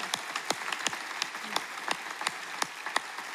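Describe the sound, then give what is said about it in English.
An audience applauding graduating seniors who stand up to be celebrated: a steady, dense wash of many overlapping hand claps, with sharper individual claps popping out every fraction of a second. Moderately quiet, with no voices. “If you're a graduating senior across any of our campuses or even right here, will you stand up so we can celebrate you and applaud what you've done, the accomplishment of graduation here across the campuses.”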